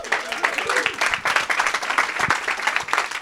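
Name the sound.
audience round of applause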